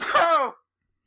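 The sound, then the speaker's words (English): A single sharp sneeze bursts out, an abrupt noisy onset trailing into a brief voiced tail, then silence. “We have to edit those sneezes out.”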